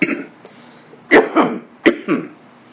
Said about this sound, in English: Sorry. I don't know. Today suddenly picked up cough.